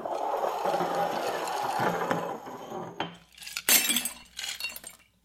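A drinking glass shatters with a loud crash, followed by scattered tinkling of shards clinking and settling, with no voices.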